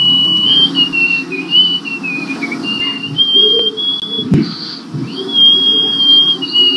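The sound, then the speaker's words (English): A loud, sustained whistle blown through the nose by a woman, a thin high tone wavering in pitch with brief breaks, over a breathy low rumble and no talking. “Yeah, yeah, she's blown a whistle out of her nose.”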